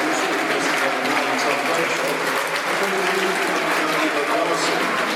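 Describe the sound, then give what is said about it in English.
Steady applause from a large stadium crowd as John Bradshaw leaves the pitch, substituted after 66 minutes of a football match. Dense and continuous for the whole stretch, a broad wash of clapping with murmuring voices mixed in and no pauses. “John Bradshaw leaves us. Good applause.”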